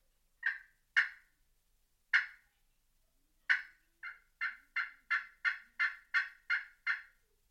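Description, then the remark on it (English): A Hooks Exterminator glass friction call played with an Ipeh gobbler stick makes turkey tree yelps: three spaced, raspy high notes, then a steady, even run of about ten quick yelps, with no talking. “That is still a tree yelp, but you would use that in a situation where you're further from the roost.”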